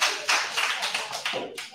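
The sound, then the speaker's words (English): A crowd of people applauding, a steady dense patter of many hands clapping at once, fairly loud, with no voices over it. “Why are they clapping when I found?”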